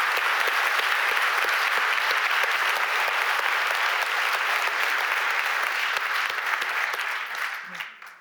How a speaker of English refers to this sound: All right, another round of applause, please, for Margaret Austin.